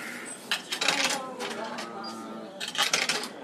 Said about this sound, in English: Cash only. This one's cash only. All right. Let's make a card. Here. Some coins here. These ones are 101.